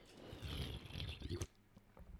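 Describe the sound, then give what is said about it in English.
A quiet sip of water: about a second and a half of soft slurping and rustling, then a sharp click, a brief hush, and another small click at the end. “Let me just have a bit of a sip of water.”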